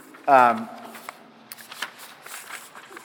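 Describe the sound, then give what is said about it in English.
A book page is turned to page 22, making soft, crisp papery rustles and a few small flicks, just after a short vocal sound at the start. “So I'm turning the page now to 22.”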